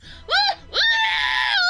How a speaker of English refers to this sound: Link was only able to scream for a few seconds.